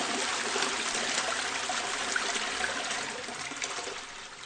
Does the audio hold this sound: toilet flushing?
yes